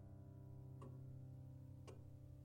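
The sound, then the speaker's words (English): A clock ticks quietly, two crisp ticks roughly a second apart, over a steady low background hum with no voices. “Being locked in an airless box, a ticking clock, a numb bum, and Webb saying nothing”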